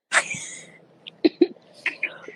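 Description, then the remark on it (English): A woman with a bad summer cough coughs: a sharp, loud cough opens, followed after a pause by a run of four or five shorter, quieter coughs in uneven bursts, with no talking. “So, you know, I know they like, why you got this girl on here? She coughing.”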